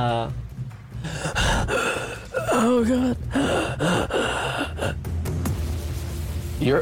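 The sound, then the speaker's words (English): An ensign in a transporter room gasps repeatedly for air in ragged, strained breaths, fairly loud, broken by a brief spoken exclamation and continuing in uneven heaves throughout. “is gasping for air.”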